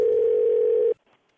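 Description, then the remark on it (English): A steady, loud telephone tone holds for just under a second as a morning wake-up call is placed, then cuts off abruptly, leaving near silence with a faint rustle. “why don't you call my dad and give him a wake-up call?”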